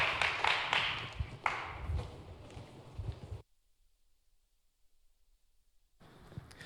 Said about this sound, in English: So please give these folks a warm round of applause.